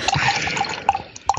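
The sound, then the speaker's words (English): Naked Lady beer from Twickenham pours steadily into a glass, a bubbly, fizzing stream with small glugs and splashes, heard on its own with no talking. “So I'm just pouring myself a naked lady.”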